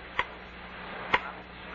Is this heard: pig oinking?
no